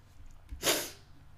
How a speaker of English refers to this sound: Sniffling because it's fucking cold in my house. I don't have corona.